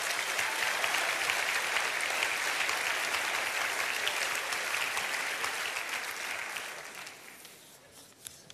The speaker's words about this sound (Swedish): Ja, nu vaknar de till liv här. Har ni sovit gott eller? Nej då, ge dem en riktig applåd. De är fantastiska.